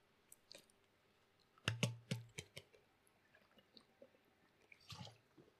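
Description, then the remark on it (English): Quiet handling noises: a cluster of sharp clicks and soft wet gulps as someone takes a sip of water, then a brief pause and one more small swallow near the end. No talking. “Sorry, I need some water here.”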